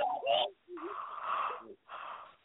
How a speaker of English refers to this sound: Oh, the peacock. The bird with the big feathers. Remember?